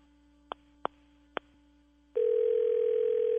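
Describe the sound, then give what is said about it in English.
Three quick, sharp beeps of phone keys being pressed to call someone onto the line for an insurance call, then a steady, loud electronic tone that starts abruptly and holds on as the line connects. No one speaks. “Let me see if I can get him on the phone.”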